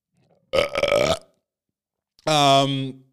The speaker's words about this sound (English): And see, that was the perfect time for a burp to come up because that's the level of respect I give this story.